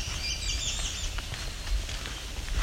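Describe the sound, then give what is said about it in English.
Black-throated green warblers sing thin, high, buzzy phrases, loudest near the start, over a steady low outdoor rumble with no talking. “As you can hear, this place is loaded with black-throated green warblers.”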